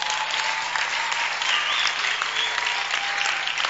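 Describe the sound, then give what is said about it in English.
A church audience claps for a prophet in a steady, dense wash of applause that holds an even loudness throughout, with no voices standing out above it. “Is it okay to clap for prophet?”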